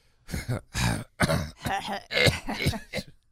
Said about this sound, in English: My stomach's tore up. That's why he's coughing. I'm coughing. It's so bad, guys.